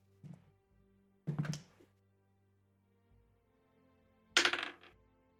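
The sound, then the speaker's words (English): Dice clatter on a table in three separate bursts, a roll for a sleight of hand check in a game: a light tap followed by two louder rattling rolls, with quiet pauses between and no one speaking. “roll a sleight of hand.”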